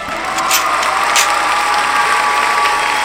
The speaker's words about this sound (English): we about to switch them claps up too, cause everybody got them fucking claps, dog.